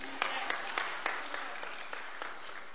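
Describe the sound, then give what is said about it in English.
An audience at Community Life church applauds itself at the start of a morning service in a steady, dense wash of clapping, with sharper claps standing out at a fairly regular rhythm throughout. “Give yourself an applause.”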